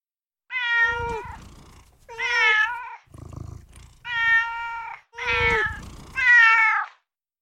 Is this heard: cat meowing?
yes